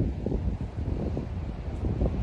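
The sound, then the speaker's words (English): Steady wind buffets the microphone outdoors, a loud, low rumbling roar with gusty fluctuations throughout and no voices. “It's a little windy, so I don't know how it's going to sound, but I'm gonna work with it.”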